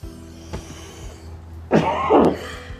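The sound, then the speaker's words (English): Two rough, hacking coughs burst out, one right after the other, following a short stretch of quiet hum and a faint click. “Well, this has been hacking and coughing with Toke Signals.”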